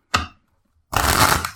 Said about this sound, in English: But for example, if you take a deck and you shuffle it, right? And I was doing this yesterday just to see.